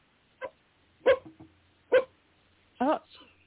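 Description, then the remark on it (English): A dog barks four times in sharp, separate bursts spaced about a second apart, loud, with a faint whimpering tail after the last bark. “Oh, the dogs are barking.”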